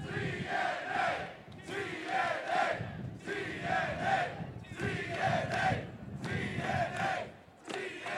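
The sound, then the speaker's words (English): About 2,000 wrestling fans on a cruise chant "TNA" in unison, a loud, rhythmic two-beat cry repeated over and over with short breaks, many voices blending into a roaring, echoing mass. “We have about 2,000 fans here on this cruise chanting TNA.”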